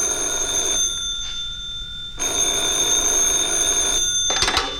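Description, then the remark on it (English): A telephone rings with a bright, steady electronic trill, pauses for about a second, then rings again, ending in a brief clattery burst. It is fairly loud, with no talking. “He's making a call. He's like, it's coming your way.”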